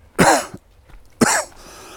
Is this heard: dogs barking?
no